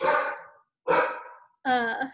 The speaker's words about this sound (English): again, the dog.